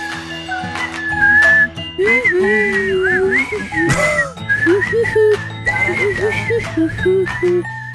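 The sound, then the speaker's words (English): A girl who can't quite whistle whistle-sings, humming a wavering, whistle-like tune from her throat, high and slightly breathy, following a melody over steady background music, with short pauses between phrases. “does that thing that kids do when they can't quite whistle, where she makes the noise with her throat.”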